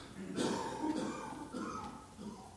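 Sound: cough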